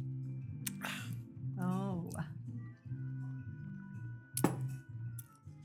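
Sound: glasses clinking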